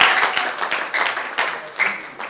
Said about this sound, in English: Clap your hands for these people.